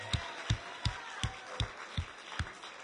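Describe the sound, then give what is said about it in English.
An audience claps in unison, giving the Lord a hand clap of victory: a steady beat of about eight sharp claps over a low, continuous crowd murmur, with no talking. “Let's give the Lord a great big hand. One more, a hand clap of victory.”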